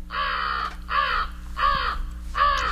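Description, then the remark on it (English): An American crow caws four times in a steady, evenly spaced series, each call harsh, hoarse and fairly loud and close, over a faint low background hum. “American crows are abundant in Ohio, and we know they're brave and smart, good for baseball players.”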